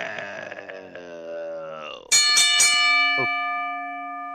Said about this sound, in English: Ring the bell!